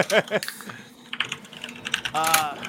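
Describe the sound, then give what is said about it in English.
Rapid, forceful clacking of computer keys as someone types "MJ" for Michael Jordan, struck in quick irregular bursts, with brief fragments of a voice mixed in. “Man, the aggressive keys.”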